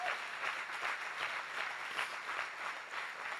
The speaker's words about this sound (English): If you believe that and receive that, clap your hands, give him praise.